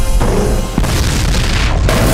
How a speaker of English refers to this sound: But, oh, racing away from the explosion. Get down!